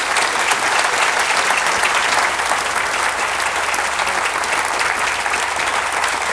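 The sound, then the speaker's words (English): Sustained applause from an audience fills the whole stretch, a dense, steady wash of many hands clapping at a constant loudness with no voices standing out. “Good long clap.”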